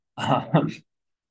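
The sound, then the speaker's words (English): A short cough with a rough, throaty two-part burst, heard alone against silence. “Actually, I had to cough there.”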